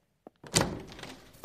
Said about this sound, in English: Then you open the door.